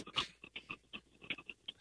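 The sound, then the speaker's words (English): A caller's dog pants right by the phone's receiver during a call-in show: quick, steady bursts, about nine short breathy huffs in under two seconds, soft and slightly raspy, with no voices. “Do you have a dog with you? Yeah. I can hear him panting.”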